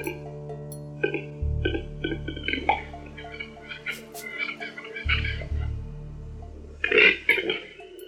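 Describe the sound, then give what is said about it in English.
A male capercaillie's display song: a run of dry clicking pops, then a hollow cork-like pop and harsh wheezing gurgles, with no talking over it. “it a song, and I guess the females perceive of it as a song, but it's really a whole series of noises from reverberating drum rolls to popping champagne corks, to even a kind of voluminous belch kind of thrown in there.”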